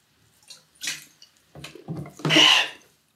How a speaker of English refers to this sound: So let me explain after a quick sip from the water.